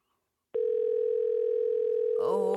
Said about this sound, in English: If I hear the phone ring one more time, I'm going to freak out.